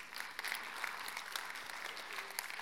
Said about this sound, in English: So Wednesday nights, we're going to have seminars on how to clap in church. No, I'm playing. It's all good. We'll get it.